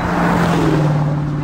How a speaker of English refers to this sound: A driver in a sports car zooms past us well above the posted speed limit, which is already 40 miles per hour.